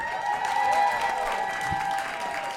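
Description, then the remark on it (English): Steady, continuous applause from a crowd, a dense patter of clapping that holds an even loudness throughout, with faint whistle-like tones threaded through it and no talking. “So let me allow time for that applause break, because that definitely deserves one.”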